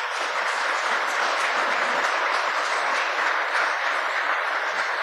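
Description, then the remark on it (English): A crowd applauds steadily and fairly loudly for several seconds, a dense wash of many hands clapping with no voices over it. “Give yourselves a nice big round of applause.”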